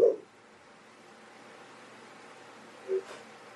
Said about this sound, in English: Luna agrees. Luna's barking at something here.